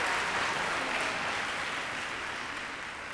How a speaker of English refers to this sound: And that's our Dazzling Dolphin Show! Let's give Doris and her dolphin friends a big round of applause!